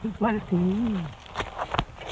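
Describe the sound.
A swearing duck in Australia imitating human speech: two short, voice-like phrases with a gliding, hoarse pitch, followed by a few sharp clicks and soft rustling noises.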